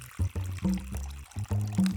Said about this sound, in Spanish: Ve a una mesa y échale agua a un recipiente grande. Puede ser de cualquier material, pero uno de vidrio es bonito.